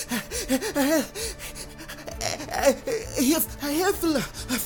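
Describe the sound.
A voice reading a story acts out Piglet's heavy, out-of-breath panting as he reaches Christopher Robin's house: a steady run of quick, breathy, voiced huffs and gasps, fairly loud, with no clear words.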